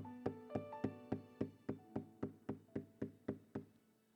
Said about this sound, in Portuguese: eu estou na porta e eu estou batendo. Escuta o batido da porta.